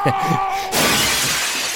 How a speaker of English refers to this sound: And then he picks up his typewriter and throws it through the window.